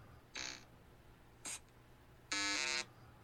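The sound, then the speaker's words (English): Three harsh electronic buzzes with no one talking: a short one, a very brief chirp, then a longer, louder buzz with a strong harmonic tone, over a faint low hum. “You will listen to buzzer sound effect all sound.”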